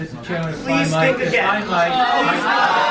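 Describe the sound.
A crowd erupts at a hearing, many voices shouting and talking over each other in a loud, sustained uproar that doesn't let up.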